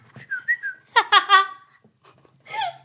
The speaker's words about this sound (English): No, it's the whistle that got me. It's just great.